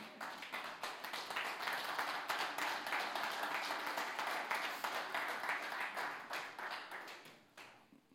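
An audience breaks into steady applause, many hands clapping in a dense, crackling wash that holds for several seconds before thinning out at the end. No one speaks over it.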